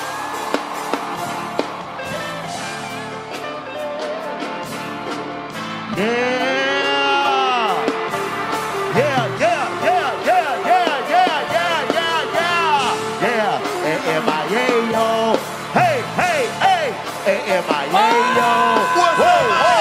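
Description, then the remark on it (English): A crowd in Miami at the 85 South Show cheers and whoops, with many overlapping voices shouting at once. The noise swells noticeably about six seconds in and stays loud and continuous, with high rising and falling whoops throughout. “Miami, make some noise!”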